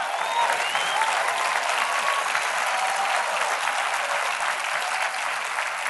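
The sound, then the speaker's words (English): An audience breaks into sustained, loud applause, a dense steady wash of many hands clapping at once that holds evenly for several seconds with no voices standing out. “Well, if you're going to clap, you got to clap.”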